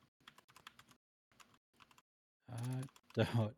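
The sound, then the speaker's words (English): Rapid, uneven bursts of clicking keystrokes on a computer keyboard, moderately loud, with brief pauses between runs, then a person starts speaking. “I can hear your keyboard.”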